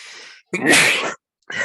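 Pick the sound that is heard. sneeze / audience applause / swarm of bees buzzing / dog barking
sneeze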